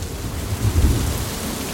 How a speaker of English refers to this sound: And at the same time, when the rain does fall, and there's still plenty of rain, no one will be surprised to hear, it falls in much more intense bursts.